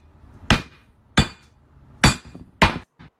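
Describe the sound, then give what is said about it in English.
A hammer repeatedly strikes a thick glass Crown Royal Peach whisky bottle that does not shatter, four sharp ringing impacts at uneven intervals and a fainter fifth tap, loud with no voices. “I want to know how the fuck this thing is not shattering. That's Crown Royal, isn't it?”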